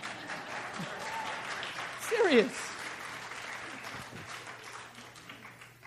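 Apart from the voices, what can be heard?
audience applause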